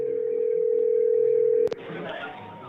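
A steady, unbroken telephone dial tone hums for about a second and a half as a call is placed, then a sharp click cuts it off and faint line noise follows.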